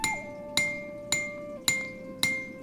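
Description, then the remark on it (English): A man's hammer rings against swords five times by an open furnace at a steady, unhurried pace, each strike bright and clanging with a lingering metallic hum, over a low background rumble. “You step in front of the doorway, looking into the shadow of a man, hammering at swords.”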